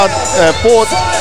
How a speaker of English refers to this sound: Oh, look, another big crowd here. 6,589 people.